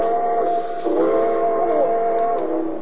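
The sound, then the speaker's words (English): Train number 31 rumbles steadily as it pulls out of the station on track 3, its sustained whining, hissing tones holding without a break as it starts moving off, loud and continuous with no voices. “Train number 31, the Cinder Bucket, now leaving on track 3. Board!”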